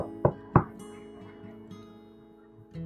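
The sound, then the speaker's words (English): Two quick, solid knocks on a door land together near the start, then a steady soft tonal background carries on alone with no further knocking. “Daisy and Baby Rose did not answer the door, so Rocco knocked again.”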